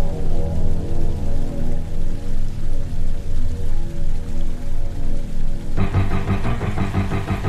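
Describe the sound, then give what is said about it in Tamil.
Heavy rain that has not stopped since the previous night pours steadily with a dense, hissing wash, a regular low throb pulsing underneath. Near the end the sound thickens into a rougher, buzzier rumble. No one speaks. “மழை விடாம பெஞ்சுகிட்டு இருக்கு.”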